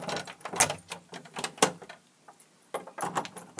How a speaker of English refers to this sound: I've left the key in the door. My sister's back.